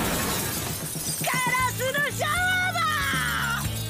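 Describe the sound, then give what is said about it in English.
Loud glass shattering as a kid throws a rock, a sharp crash followed by a cascade of tinkling shards ringing for a few seconds, prominent over a busy background with a faint voice. “As he throws a rock and just poses in a shower of glass.”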